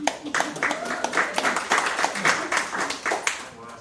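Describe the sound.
An audience claps by hand, a dense, irregular patter of many sharp claps that swells and holds steady for a few seconds, with faint voices mixed underneath.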